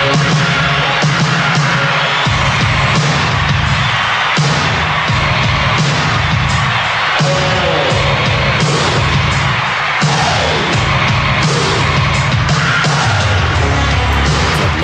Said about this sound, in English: Now, keep in mind, they're putting in crowd noise into a song that was recorded in the studio. I love that.